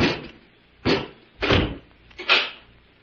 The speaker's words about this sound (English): Robot One, close the door and bolt it.